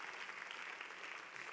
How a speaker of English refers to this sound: We are in the ministry to give. Somebody wanted to clap there.